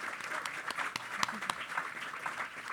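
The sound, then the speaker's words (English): An audience at a City Club forum applauds the panelists with steady, dense clapping, a continuous crackle of many hands with a few sharper claps standing out, holding at a fairly even level throughout. “I want to give another round of applause for our panelists here”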